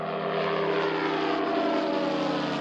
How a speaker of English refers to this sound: General Atomics makes the Predator, a satellite-controlled airplane that looks like an upside-down flying spoon. Its 25-foot wings are so light you could lift them with one hand. But this delicate craft is lethal.